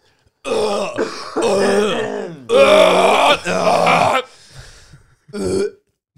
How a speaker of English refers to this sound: Oh, and I got a cough.